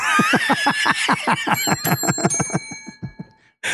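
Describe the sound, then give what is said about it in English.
A battered, clanky bell that had been thrown is rung rapidly and loudly, about two dozen quick strikes over three seconds, its tinny overtones ringing and fading before one last short jangle. “that's a horrible bell.”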